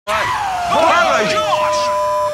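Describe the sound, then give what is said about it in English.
A loud, bone-chilling creature scream holds for about two seconds, its layered, warbling tones swooping up and down over a steady piercing whine, with no talking. “We just heard the Yahoo scream. It's more powerful than I ever imagined.”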